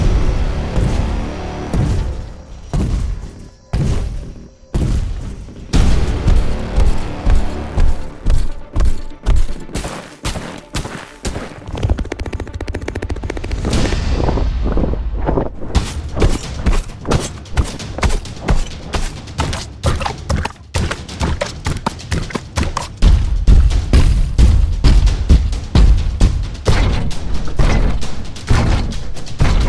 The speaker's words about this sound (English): Sound designer Michel Marchant is the owner of the sound effects company Bonson and the maker of the new creature footsteps library Stomps.